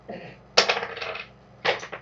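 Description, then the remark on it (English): Two bursts of hard clattering as dice are rolled across a table for a wisdom save in a tabletop role-playing game. Each burst rattles quickly to a stop. Fairly loud, with no voices. “He's bad at rolling dice.”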